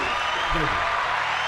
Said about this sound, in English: Go ahead. I got you. You want some applause?